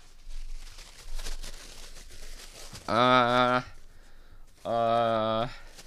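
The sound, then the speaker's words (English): Soft, irregular paper rustling and crinkling for a couple of seconds as a person searches through sheets of paper, followed by two long, drawn-out vocal sounds, like the person humming or droning while searching. “hold on, let me find the paper here.”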